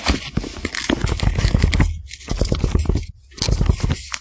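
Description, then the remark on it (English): Paper crinkles and scrapes for several seconds, a busy, crackling rustle that pauses briefly twice before resuming, with no voices over it. “I got some paper around here.”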